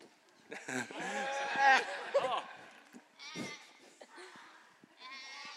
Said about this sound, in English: You're welcome to, you can sit right here on the floor if you want to get a good view of the sheep.